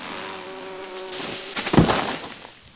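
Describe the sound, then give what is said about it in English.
Furious bees buzz in a steady, droning hum for about a second and a half, stinging an animal that has its paws in their honeycomb in a tree at the edge of a forest, then a sharp, heavy thump cuts in before the sound fades away. “The bees were mighty furious, stinging her all about her nose and biting her tail.”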